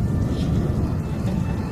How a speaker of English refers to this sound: just so you know, there's like a really low-end rumbling that we can hear from a storm Yeah, I'm sure the storm is brewing, but it also made it so that we couldn't hear a lot of what … was saying.